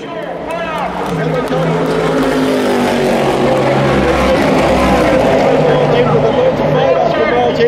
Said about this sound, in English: just forget, or at least try and ignore what I'm mumbling over the background noise, and lose yourself in this audio landscape at the end of the 2017 24 Hours of Le Mans. It's a treat.